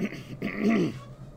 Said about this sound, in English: I swear I don't have COVID, it's just a cough.